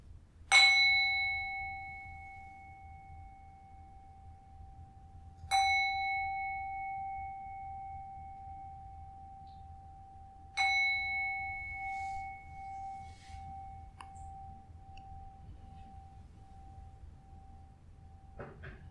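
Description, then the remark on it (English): Three struck meditation gong tones marking the end of a meditation session, about five seconds apart, each a sharp hit that rings out in a long, clear, sustained hum, with the last one left to fade slowly into quiet. “Be finishing now, so please come out of meditation slowly after the 3 gong.”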